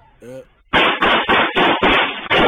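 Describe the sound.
A brief voice, then a rapid burst of gunfire from a video: about six loud, sharp shots in quick, fairly even succession, each a harsh crack with a short rumbling tail.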